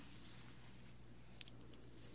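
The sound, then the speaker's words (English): Soft, steady pattering of water trickling down a drain, a continuous light splashing texture with a faint low hum beneath and a couple of small drips near the end. “It kind of reminds you of the rain, too, right?”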